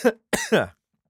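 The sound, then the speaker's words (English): A sharp cough followed after a brief pause by a longer, raspy double cough that trails off, with no talking around it. “got attacked by a cough thing there.”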